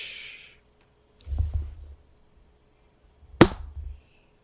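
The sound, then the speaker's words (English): A hand slaps a microphone: a soft muffled thump first, then a sharp, loud smack about two seconds later, each ringing with a low boomy rumble. Nobody speaks. “Yeah, I like fucking just bitch slap my mic when I do that.”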